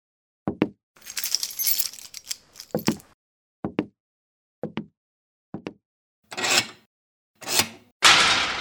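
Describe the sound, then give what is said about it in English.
A ring of keys jangles and rattles, followed by several sharp metallic clicks spaced a second apart, then a few harsher scraping bursts as a heavy jail cell lock and door are worked open. “where are the keys? Right there on the desk.”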